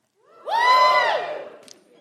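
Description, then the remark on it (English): A short burst of cheering from live audience members who are on dating apps, rising quickly into a bright, sustained whoop that lasts about a second before fading away. “Give us a cheer if you're on the apps.”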